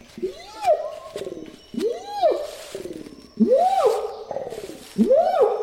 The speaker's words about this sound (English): Get ready to dream yourself away to the dense rainforests of Indonesia. You remain still to listen to the sounds of the forest. You hear a rustling and suddenly you spot a giant, hairy, orange creature that appears among the greenery.